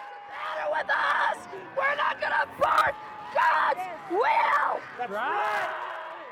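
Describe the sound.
Several voices shout and scream together in loud, ragged bursts, rising and falling in a fervent chanting rhythm with brief pauses between outcries, close and intense throughout.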